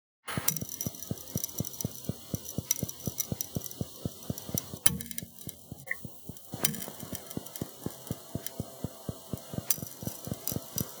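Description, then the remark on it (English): Glass cracking under deep-sea pressure: a rapid, steady train of sharp ticks and clicks with a ringing, reverberant tail, broken by a short lull midway before the crackling resumes. “Glass cracking. It's glass cracking. That's correct.”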